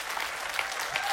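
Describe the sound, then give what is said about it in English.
A church audience applauds steadily after the pastor mentions 29 years as pastor at Grace, many hands clapping at once in a dense, continuous patter with no pauses and no voices rising above it. “You're pretty sick to clap at that.”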